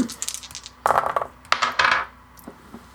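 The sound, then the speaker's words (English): Dice clatter and tumble across a hard tabletop in a few quick rattling bursts that settle into faint clicks as they come to rest. “Can you do me a perception check?”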